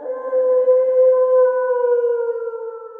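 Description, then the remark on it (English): A gray wolf gives a single long, steady howl with a gently falling pitch, held for about three seconds, clear and loud with no other sounds. “No matter how big or small or different, all dogs evolved from the same species, the gray wolf. Ain't that right, Mr. Wolf?”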